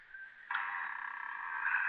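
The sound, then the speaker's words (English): A door, its lock just undone, is opened carefully to make little noise and eases open with a long, steady creak, a thin, slightly raspy midrange squeal that starts faintly, swells suddenly and holds for over a second. No one speaks. “Now to open this door without making too much noise.”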